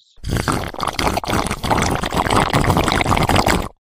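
A loud, wet slurp of a drink runs for several seconds, harsh and noisy, with a few brief catches where the sucking breaks off and resumes. No one speaks.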